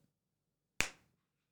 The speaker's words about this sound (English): Okay, I'm going to clap and then count to two, and then you clap.